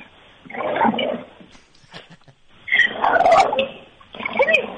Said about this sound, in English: I heard the growling. I heard a couple growls.